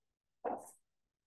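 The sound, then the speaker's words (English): A Shih Tzu poodle mix dog lets out one brief whimper lasting under half a second, with nothing else around it and no talking. “It's like, I don't really mind the whimpers, but dude, those nails.”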